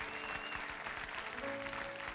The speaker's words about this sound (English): Can I have an amen? If you believe that, would you give the Lord a clap offering as we close?